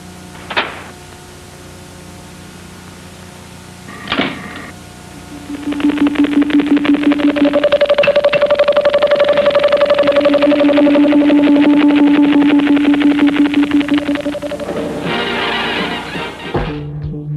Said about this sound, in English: Right off the bat, we get a stuttering chopper-like sound effect that's taken from the 1958 sci-fi horror film A Terror from the Year 5000.